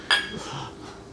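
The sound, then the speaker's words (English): A single bright clink of shot glasses of scotch touching in a toast, with a short ringing tone that quickly fades. No one speaks. “and so I brought a bottle of scotch here. I got my … shot glass from when we went to visit the … down in Beale.”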